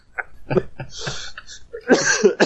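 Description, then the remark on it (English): A fairly loud fit of coughing and sputtering, several short harsh bursts in quick succession, ending in a longer, rougher choking cough, after tea went down the wrong way. “Your tea gone down the wrong hole.”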